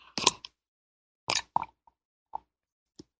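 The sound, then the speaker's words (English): Someone sips mate tea: two short, breathy slurps followed by a few soft wet clicks and quiet gulping sounds, with silence between them and no talking. “I'm going to take a sip of my mate tea here.”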